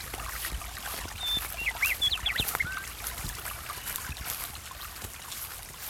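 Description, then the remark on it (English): A few thin, high bird chirps and whistles come in a brief flurry, fairly faint, in a forest beside a bubbling stream, over a steady wash of traffic rumble and hiss from a highway that is pretty close. “There's almost a hushed feeling because although there's bird calls and the highway is pretty close, the space feels different.”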